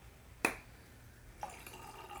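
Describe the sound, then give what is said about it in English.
A single sharp click, then champagne being poured into a glass, with a soft, steady fizzing trickle that carries on to the end. Quiet, with no voices. “Hey, you're spilling my finest bubbles.”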